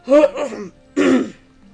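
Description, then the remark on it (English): A voice acts out a gagging cough and throat clearing: a rough, voiced double burst, a brief pause, then one more harsh cough, fairly loud with no talking. “The moment it hit his tongue, he gagged, swallowed it, and started coughing.”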